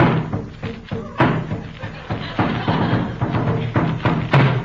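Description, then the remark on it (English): Tom-tom drums beat out a message in a steady run of low, hollow thumps, sending messages to each other about their progress in creating rain and snow. The rhythm shifts between quicker and slower strokes, with voices faintly mixed in. “And by the use of tom-toms, they sent messages to each other about their progress.”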